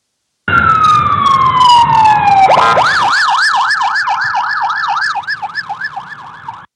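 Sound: emergency vehicle siren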